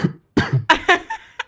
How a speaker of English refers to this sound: Cough, cough.